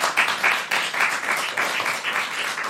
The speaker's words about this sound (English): Oh, give him a round of applause, everybody.